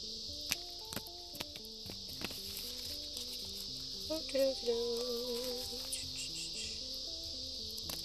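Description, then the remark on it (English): Cards being shuffled one more time before the deck is split, heard as scattered soft snaps and flicks over several seconds, set against a steady high-pitched insect-like drone and faint low tones, with no talking. “Alright, so I'm going to shuffle this one more time. And we're going to split this deck.”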